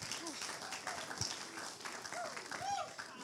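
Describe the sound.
An audience breaks into steady applause, a dense, continuous patter of many hands clapping at once, with a few voices calling out over it, welcoming a speaker invited up to share.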